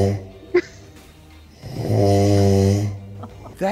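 A man snores loudly and close by: a quiet, breathy intake, then one long, buzzing, horn-like snore that swells and holds for about a second before fading, with a short snort at the end.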